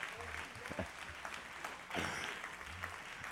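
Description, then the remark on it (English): A church audience claps together for the Old Concord Road (OCR) crew, a dense, steady burst of applause that swells briefly partway through, with a few voices faintly audible underneath. “Let's clap a hand for all of the OCR crew.”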